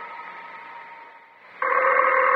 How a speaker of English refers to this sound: Harry, the phone. I know it's the phone.